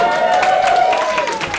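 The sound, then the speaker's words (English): A live audience at a recorded show applauds loudly with dense, steady clapping that fills the whole moment, while a sustained vocal whoop or cheer carries over the top. “Let's give us a round of applause for OCD and fear.”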